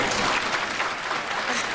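studio audience applause

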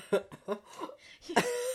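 choking cough

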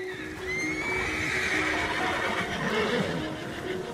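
horse neighing

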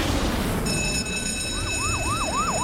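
fire truck siren

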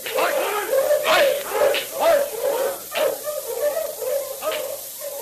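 sled dogs barking

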